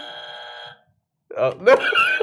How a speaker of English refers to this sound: Is it okay to have the buzzer permanently go off? Let me try.